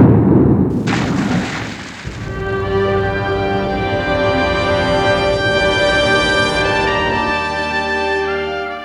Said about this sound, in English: So there's a big explosion, and you don't really see what happens to Schubert, but you expect that he somehow saves himself and gets out of there